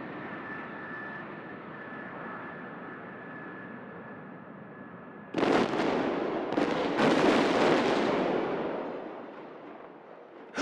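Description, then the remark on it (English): A jet engine whines steadily as the jet carrying John McCain takes off from the tarmac, then a plane crash erupts in a sudden loud explosion, followed by a few more blasts and a roaring rumble that gradually fades. “It appears the plane has crashed”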